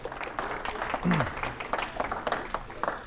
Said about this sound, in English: So everybody give him a round of applause.